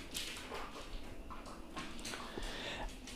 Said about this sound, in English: And sorry, now Stella just woke up and is looking for her morning dog treat.